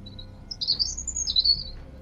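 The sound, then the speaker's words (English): Birds chirp in a continuous, high, warbling stream of quick tweets, fairly soft, with a faint low rumble underneath and no voices. “Really is lovely having those birds chirping in the background.”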